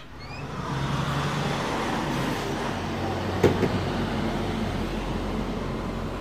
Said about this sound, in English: One thing I noticed as I was sitting at that window is that there are a lot of big trucks going by.